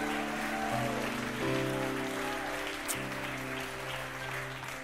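Steady crowd applause for the keyboard player at a church worship service, a dense crackling wash of clapping that holds for several seconds while sustained keyboard chords play underneath, shifting pitch a few times.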